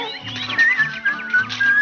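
A person whistles a short, bright melody, the notes stepping up and down in quick succession over soft instrumental backing, lasting about two seconds.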